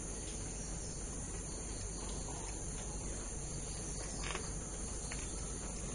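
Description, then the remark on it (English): Crickets chirp steadily and continuously outdoors, a dense, even insect trill filling the background at a moderate, unchanging level with no speech. “A cricket sound.”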